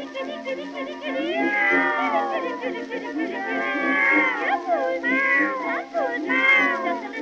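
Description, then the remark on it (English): A human voice mimics cat meows in a steady run of drawn-out, swooping mews and yowls, loud, with no actual words spoken. “She's got the neighbors talking, and they don't think she's right, for you can hear her calling cats at any time of night.”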